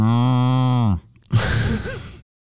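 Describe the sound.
A man imitates a cow with his own voice, not a sound button, in one loud, sustained low moo lasting about a second, then a short pause and a breathy, rushing exhale.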